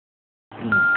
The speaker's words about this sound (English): Can you turn down the volume of whatever you have recording, because it's beeping really, really loud.